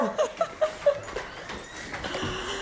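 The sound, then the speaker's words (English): A dog whimpers in four short, high-pitched whines in quick succession, followed by soft rustling and shuffling noise. “Hold on, let me get the dog.”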